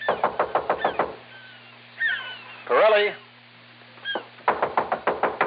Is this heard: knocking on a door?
yes